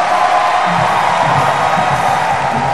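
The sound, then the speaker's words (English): An audience claps and shouts together in a loud, steady roar of applause and cheering, with voices whooping over the dense clapping for the whole stretch. “Give the Lord a big clap offering and a shout.”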